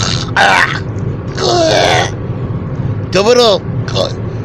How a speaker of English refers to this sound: All right, there's something you don't hear on podcasts very often. A grown man clearing his throat like an old Jewish man.